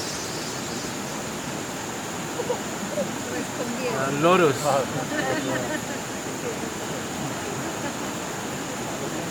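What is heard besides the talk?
rushing waterfall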